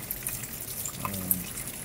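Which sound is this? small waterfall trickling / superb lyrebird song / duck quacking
small waterfall trickling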